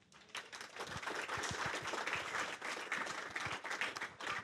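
A crowd of people claps steadily for several seconds, a dense patter of many hands, fairly even in loudness with no voices rising above it.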